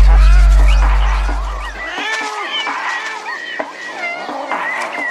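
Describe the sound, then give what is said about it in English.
Several cats meow and yowl over one another in a steady, overlapping chorus, clear, with a deep low rumble underneath for the first couple of seconds. “Cats from far and wide are irresistibly drawn to a seemingly insignificant part.”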